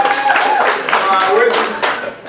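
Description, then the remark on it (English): A few scattered hand claps ring out, sharp and moderately loud, mixed in with overlapping voices and chatter throughout the short stretch. “There you go, clap for me.”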